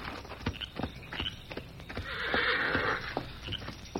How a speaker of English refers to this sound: Then suddenly he was startled by a warning whinny from his horse, Victor. That's Victor. Something's wrong.